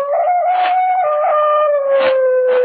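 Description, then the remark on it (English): A dog howls from across a lake at night in one long, unbroken note that holds steady and slowly sinks in pitch, with a few breathy swells along the way. No one speaks. “From somewhere across the lake, I heard the cry of a dog, and the sound of it filtered through and was carried along by the night air.”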